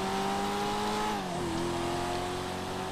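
A sports car engine, the Coquette, which looks like a Chevrolet Corvette Z06, drones loudly at high revs, its pitch holding steady before dipping as the revs fall and settle into a lower, continuous roar. No one speaks.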